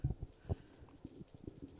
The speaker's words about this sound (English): My dog is scratching her nuts off. Honey, cut it out.